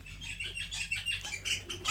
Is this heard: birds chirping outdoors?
yes